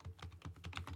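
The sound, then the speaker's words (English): Quick computer keyboard typing: a steady run of soft clicking keystrokes, about five or six bursts in a second, with no one speaking. “You probably hear me typing there a little bit”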